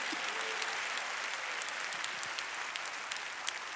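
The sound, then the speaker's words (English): A crowd claps steadily for several seconds in praise of God during a sermon, a dense patter of many hands forming a continuous wash of bright, crackling applause at an even level, with no talking over it. “If you know I'm telling the truth, clap your hands and give praise to God.”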